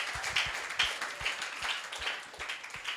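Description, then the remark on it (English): A crowd applauds a young woman who sings and leads worship, many hands clapping in a dense, steady patter that holds evenly for a few seconds, with no voices heard over it. “Give her an applause.”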